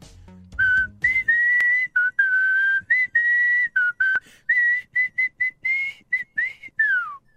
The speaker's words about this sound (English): Actually, they hooked this Google feature up to our system here that plays all of our music. So now instead of having to type it off, I just got to whistle. So let's give it a go.